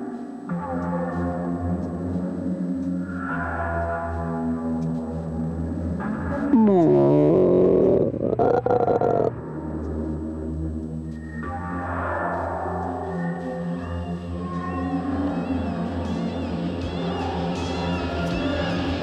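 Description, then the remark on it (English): Eerie, humpback whale-like moans drift and glide in pitch over a steady low drone, swelling louder for a few seconds midway before settling back into layered, wavering tones. “sounds like humpback whales sort of, but it could be ghosts in a closet.”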